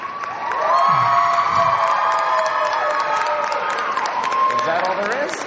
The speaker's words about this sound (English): And keep that applause going for all of our judges, our tireless tech crew, our staff, the PI Jedi Saber Guild.